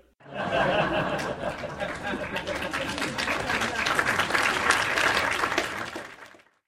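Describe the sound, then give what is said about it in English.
Sustained crowd applause, edited in as clapping for Bucktown, a Chicago neighborhood, with dense, steady clapping lasting several seconds, mixed with some laughter and chatter, then fading out at the end. “Can you edit in some clapping for Bucktown?”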